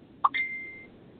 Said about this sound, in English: A ding. Ding, it's for you. Someone got a notification. You got ding, notification.